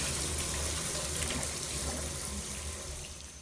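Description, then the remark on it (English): Steady running water from a shower in a cramped wooden stall, a continuous hissing spray with a low rumbling undertone, fairly loud, with no voices. “Cramped up in a wooden stall, awkwardly washing next to other girls my age.”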